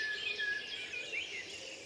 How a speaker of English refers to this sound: As you can hear, it's quite deafening this morning. I'm just underneath my favourite blackbird.